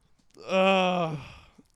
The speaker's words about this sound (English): Oh, he's after yawning he's done right yawning, now.